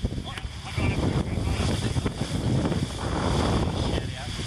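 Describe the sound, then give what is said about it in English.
Strong wind roars and buffets across a sailboat, a steady loud rush with low rumbling gusts and splashing water, muffled voices faintly underneath. “Most important thing on a windy day is to keep your skipper calm, apparently, as a tactician.”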